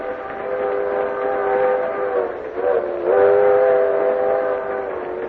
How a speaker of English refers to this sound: All the while in the train that carried me towards home, I kept chuckling to myself.